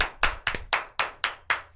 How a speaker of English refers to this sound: Oh, they're clapping.